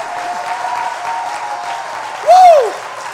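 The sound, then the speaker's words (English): An audience at a Christian worship service claps steadily in praise in a dense, continuous wash, with a held tone running underneath and a voice rising and falling loudly for a moment near the end. “Clap your hands.”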